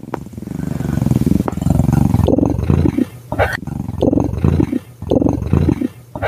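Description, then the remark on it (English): A person imitates a cat's purr: a steady, low, buzzing rumble that pauses briefly every second or so, as if for breath, and carries on for several loud cycles without any talking. “I can purr. Like a kitten?”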